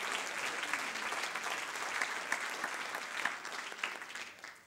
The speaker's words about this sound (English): Clap your hands if you believe that the I am is able.